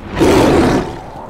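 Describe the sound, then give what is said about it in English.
A single loud, harsh griffin cry like a roaring screech, forceful, swelling quickly and then fading over about a second with no talking. “Yep, definitely a griffin.”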